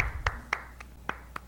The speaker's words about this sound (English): One person clapping in the room. I don't know if you noticed.